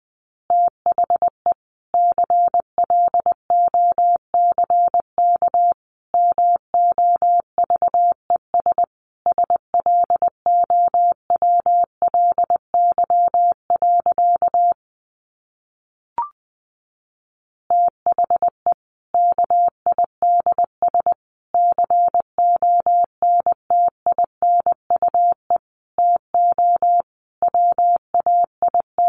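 Morse code at about 20 words per minute: a steady, mid-pitched tone keyed in quick dots and dashes, with a brief pause and a faint click partway through before the beeping resumes.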